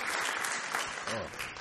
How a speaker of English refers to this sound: That's a nice round of applause.